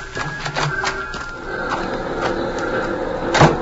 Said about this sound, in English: Now open the door and get inside.